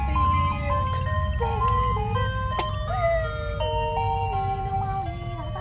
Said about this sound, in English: The fucking ice cream truck is literally like 3 feet away from our faces.